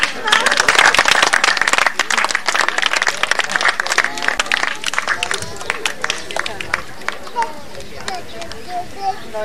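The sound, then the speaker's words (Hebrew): An audience breaks into loud, dense applause for people invited onto the stage to be thanked. The clapping rattles on steadily, then gradually thins toward the end, with faint voices murmuring beneath. “בואי חיות כפיים.”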